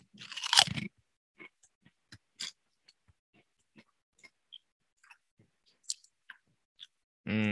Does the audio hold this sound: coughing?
no